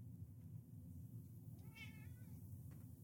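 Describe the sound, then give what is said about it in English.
A single cat meow rises and falls briefly in the middle over a steady low rumbling background hum with no talking. “My cat says it better than me.”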